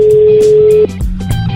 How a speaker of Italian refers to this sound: Lo chiameremo dopo, vediamo se squilla. Il telefono squilla. Il telefono squilla. Ce l'abbiamo.